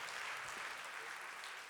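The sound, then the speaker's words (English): A crowd claps steadily at night as a clap offering to the Lord, a dense, continuous wash of many hands applauding together, sustained without a break and with no voices standing out. “Come on now, give the Lord a clap offering tonight.”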